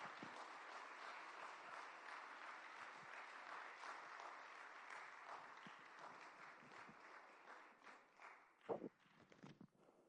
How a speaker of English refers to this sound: And so without any further ado, if we could just give a huge hand clap for Pastor Caleb Kaltenbach.